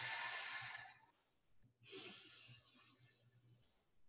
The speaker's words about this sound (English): So let's begin by breathing. Breathing in through the nose.